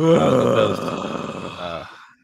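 yawn

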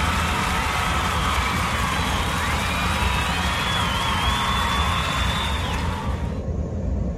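applause

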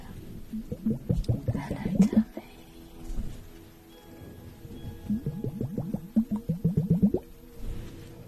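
bubbling liquid

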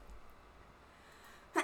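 sneeze

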